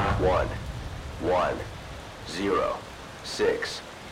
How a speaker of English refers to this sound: The wind blew stronger, the rain fell harder, and the thunder echoed a name which must not be spoken aloud.